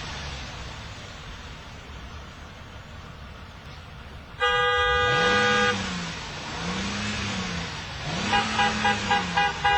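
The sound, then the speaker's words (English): A car horn blares loudly in one long blast at an elderly lady, over a low engine rumble, then a later series of quicker, pulsing honks as traffic continues in the background. “I mean, how many points do you lose for honking at an elderly lady?”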